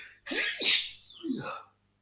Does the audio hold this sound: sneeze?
yes